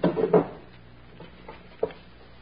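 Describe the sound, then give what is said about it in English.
A drawer of a chest of drawers scrapes open with a short wooden rumble, followed by a few scattered soft knocks and rattles as the room is searched, with no talking. “Let's search the room. You take that chest of drawers, and I'll pull the bed apart.”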